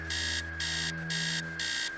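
An alarm clock upstairs in a house blares in repeating electronic bursts, four evenly spaced pulses over two seconds, loud and shrill, with no voices.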